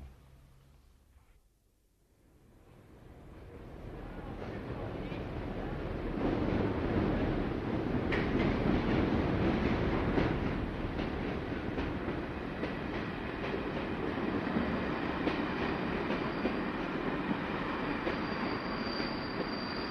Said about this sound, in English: Start of day three, and the train from Sligo has just pulled into the station in Mullingar.